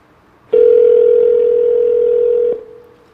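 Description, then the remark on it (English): A single steady electronic telephone ringback tone, heard as an iPhone calls a mobile number, sounds loudly and evenly for about two seconds before cutting off, with no voices. “I'll call his mobile number right now.”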